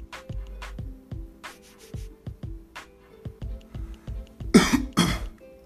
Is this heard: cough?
yes